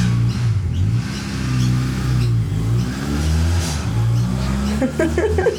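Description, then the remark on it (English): A loud motorbike engine revs and drones, its pitch rising and falling over several seconds as it passes, steady with no pauses. “It's motorbike pause.”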